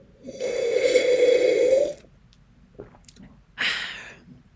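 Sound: sipping orange juice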